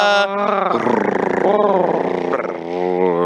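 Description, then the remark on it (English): People imitate a cat's purr with their voices for Brock Purdy, a low, rumbling, fluttering drone that holds steady for about three seconds, its pitch sliding slightly up and down. “Let's all purr.”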